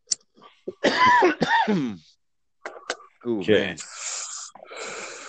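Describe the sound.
A person coughs in a drawn-out fit: harsh voiced hacks and rasping gasps come in uneven bursts, ending in long, breathy wheezes.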